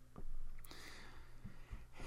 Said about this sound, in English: Excuse me. Great. I've held it this whole time, and then I coughed right on the microphone.